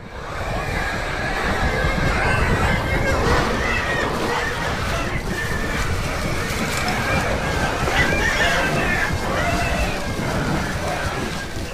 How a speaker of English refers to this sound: But let's have a listen to the arrival of these boars because it just sounds so cool, them crunching through the forest.